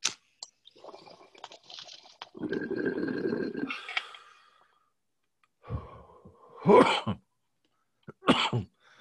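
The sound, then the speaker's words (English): A long, rough inhale through a crackling, bubbling draw as someone takes a big smoke hit, then a pause before several harsh coughs come in two short bursts. No talking. “Take one too big and then you got to cough for a while.”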